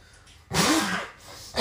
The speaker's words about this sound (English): Oh, I was trying to hold it in. I was just like, sneeze real loud.